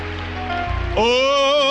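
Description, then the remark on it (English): An audience at the No Limits 2017 event claps hands in praise to God in a dense, steady patter of applause, with sustained harmonic tones swelling in over the clapping partway through. “Let's give God a good hand clap of praise right now in this place.”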